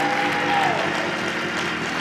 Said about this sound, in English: Keep clapping. Keep clapping. Come on.